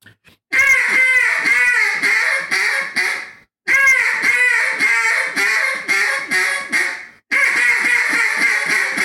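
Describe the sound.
A duck call blows three loud runs of fine hen quacks, pinched off at the throat to give a bounce, each a quick bouncing string of notes with short pauses between runs and no voices.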